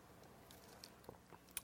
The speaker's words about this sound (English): I'll take a little sip here.